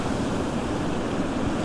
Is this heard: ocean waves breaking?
yes